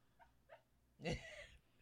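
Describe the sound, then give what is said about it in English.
A dog, Max, whimpers in his sleep while dreaming, with two soft, brief whines followed by a longer, louder muffled whimper, quiet overall with no talking. “He's having a puppy dream.”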